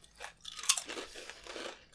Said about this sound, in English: And it's like melt-in-your-mouth potato chip. Like, I know. They're so fresh. And they're fried and so crispy and, like, perfect.